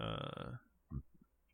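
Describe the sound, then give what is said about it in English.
A loud burp from someone who has been drinking wine, with a rough, rumbling low tone lasting about half a second, followed by a couple of softer throaty sounds. “They're burping up wine burps.”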